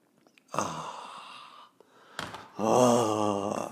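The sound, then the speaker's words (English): A breathy slurp of hot coffee being sipped, then a short pause and a loud, drawn-out satisfied sigh. “Fill it with your favorite liquid. I like coffee.”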